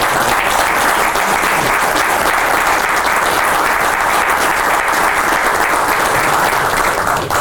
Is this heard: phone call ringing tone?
no